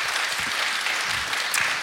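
A small audience claps steadily, a dense patter of many hands at close range filling the whole moment without any talking over it.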